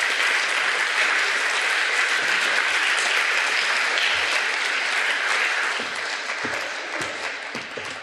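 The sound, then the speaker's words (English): Sustained applause from a crowd welcoming panelists to the stage on Mother's Day, a dense steady patter of many hands clapping at a strong level, easing slightly toward the end with a few individual claps standing out. “And with that, I would ask that we give a warm round of applause to welcome our panelists here today”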